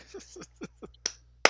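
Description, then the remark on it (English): Six quick hand claps in a loose, uneven rhythm, fairly soft and close, with the final clap after a short pause landing sharper and brighter than the rest. “That's right. Applauding him.”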